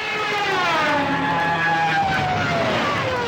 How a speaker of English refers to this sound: These are the siren screams of Stukas, dive bombing German airplanes from World War II.